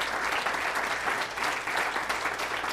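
A crowd claps steadily for a few seconds, a dense continuous patter of many hands at even loudness, with no voices standing out above it, applauding the speaker's children, who have stood up, at a church service.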